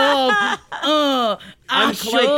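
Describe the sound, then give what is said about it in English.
A person yawns loudly, three drawn-out voiced yawns with rising and sagging pitch, separated by brief pauses, sounding like groaning stretched through the mouth. “I think you're yawning through it.”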